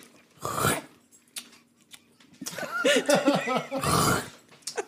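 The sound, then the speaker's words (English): A voice imitates chewing chips for an ASMR bit, making wet, gurgling throat-clearing noises mixed with smacking, chewing-like mouth sounds, in loud bursts separated by short pauses, with some pitched, grunting tones in the middle. “Dude, that just sounds like you're hawking a loogie in your mouth and chewing on it.”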